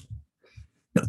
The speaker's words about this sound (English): God bless you. I got snot all over the fucking mic.